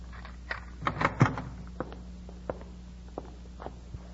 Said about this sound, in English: open the door. Yes, sir.